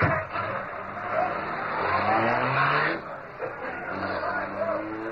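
A car driven by Kato revs up with a rising, climbing whine and roars steadily as it speeds away, the motor noise loud and continuous for several seconds with a second surge near the end.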